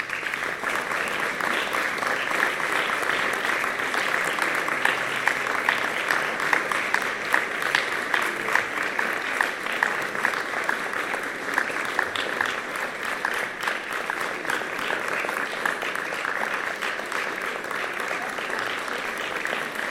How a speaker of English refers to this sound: I'll give a round of applause.